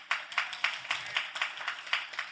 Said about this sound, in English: I thought I would get more hand claps than that.